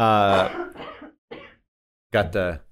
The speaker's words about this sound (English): Got the cough there.